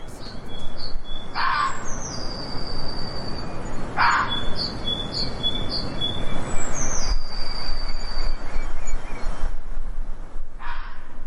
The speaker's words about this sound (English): That's the voices of red foxes in springtime, and it's not every day that our non-human neighbors make the news